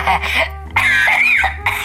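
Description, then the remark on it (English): A few loud coughs in quick succession, harsh and raspy, with a brief throaty pause between bursts and a low hum underneath. “I'm coughing now, honey.”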